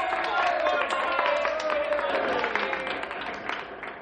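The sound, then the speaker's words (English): A crowd of young people at a nominating meeting applauds steadily after the two nominees for mayor are named, with dense, continuous clapping joined by a murmur of voices and a faint, drawn-out call that slides downward in pitch. “Now that the two top candidates have been named, please wait until I finish naming the other young people before applauding.”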